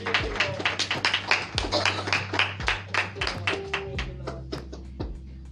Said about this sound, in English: Amen? Yes, yes. Come on and give y'all a hand clap of praise.